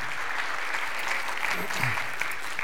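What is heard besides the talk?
audience applause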